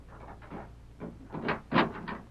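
A door opens with a series of creaking, scraping bursts that build in loudness over a couple of seconds, with no voices.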